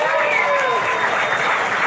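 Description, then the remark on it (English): Steady, dense applause from an audience, a continuous wash of clapping at even loudness for the full two seconds, with a few faint voices mixed into the crowd noise; a round of applause called for by a performer on stage. “So round of applause.”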